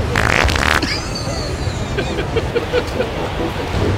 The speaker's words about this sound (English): Farts are funny. They are. And if you don't find farts funny, you're no friend of mine.